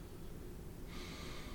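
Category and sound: human body sound, yawning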